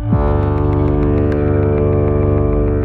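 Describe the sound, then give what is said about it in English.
A deep, loud foghorn blast holds steady for the whole stretch, a thick buzzing low tone rich in overtones with a faint rhythmic pulsing, heard alone without any voices. “This is why we use low frequencies anytime we need a sound to travel as far as possible, like a foghorn.”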